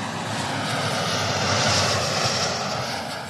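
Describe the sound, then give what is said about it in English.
A jet aircraft engine roars loudly and steadily, a dense, constant rushing drone that swells slightly midway, with no voices. “Through clever material science and engineering, we can keep raising the operating temperatures of these jet engines to improve their efficiency and produce sustainable air travel in the future.”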